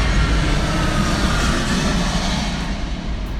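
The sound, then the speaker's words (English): A loud, steady roar of an airplane passing overhead, deep rumbling with a broad whooshing hiss, sustained without a break and no voices. “Excuse me, guys. Airplane.”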